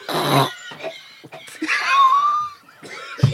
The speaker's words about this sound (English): Did you swallow something? There was a butterfly flying around here. Did you swallow it? Listen to him coughing and spluttering.